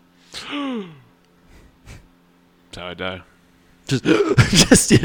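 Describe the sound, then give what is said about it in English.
A person speaks a few short words, then lets out a loud, dramatic, breathy gasp that fills the final second, exaggerated, as if in mock shock. “He gasped hard. He gasped way too hard.”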